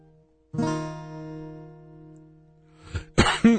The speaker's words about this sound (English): Got a cough. I got a church camp cough.